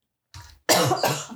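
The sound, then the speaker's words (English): A person coughs in a harsh fit: a small throaty hack, then two loud, raspy coughs in quick succession. No one speaks. “Cough it up.”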